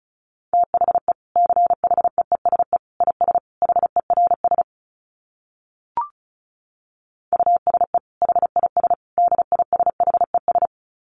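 Rapid Morse code at 35 words per minute: a single steady mid-pitched tone keyed in quick dits and dahs, two runs split by a pause with one short click, no voices.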